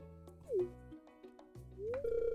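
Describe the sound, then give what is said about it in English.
A short run of electronic phone tones as a phone is set to do not disturb: a few clipped beeps, then rising chirps that settle into a sustained bright tone. Clear, with no voices. “Gotta set my phone to do not disturb.”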